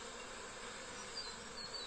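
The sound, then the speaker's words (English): A dense, steady hum of many honeybees buzzing around an open hive, a continuous swarming drone with a few brief higher whines rising above it, no voices. “So you basically want every single frame covered with bees.”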